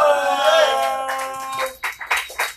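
Audience applause swells in over a sustained, tonal musical sound, then continues as loud, uneven bursts of clapping and cheering once the tone fades.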